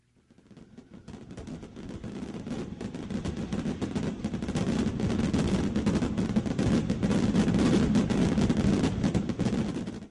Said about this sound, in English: Everybody loves fireworks.